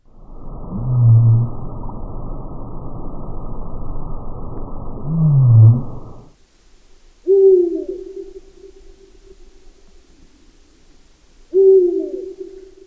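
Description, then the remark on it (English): A sped-up blue whale call, a rough, rumbling six-second moan with two swelling pulses, followed by two deep, steady owl hoots spaced a few seconds apart, clear. “Okay, so let's speed up the whale and put it next to an owl.”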